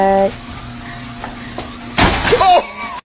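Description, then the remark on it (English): A garage door comes down and hits a woman with a sudden loud, rattling bang, followed by a short sharp cry, after a stretch of low steady hum. “What did she hit? The garage door.”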